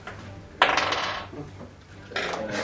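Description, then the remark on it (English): Dice clatter across a hard tabletop in two bursts, rolled for dexterity saves against a lightning bolt in a tabletop role-playing game, a sharp rattling tumble that trails off, then a second bright rattle near the end. No voices are heard. “So I'm going to hit them all with the lightning bolt. Yeah. Yeah. You have to roll a dex save.”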